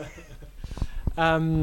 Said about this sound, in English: Jeepers, that was the door slamming.